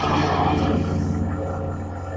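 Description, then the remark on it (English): A loud, deep, rumbling roar like a big cat's, sustained for about two seconds with a rough growling texture, filling the whole clip with no one speaking. “At that point, it sounded like a damn tiger or something.”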